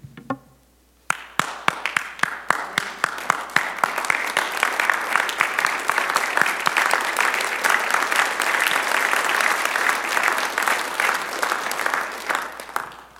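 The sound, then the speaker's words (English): A church audience breaks into sustained clapping after a brief quiet moment, lifting up in prayer those coming to the altar; many hands create a dense, steady patter with sharp individual claps standing out early on, continuing loudly throughout. “You may not hear it like that, and some of you are like, am I supposed to clap? But that's what we're doing.”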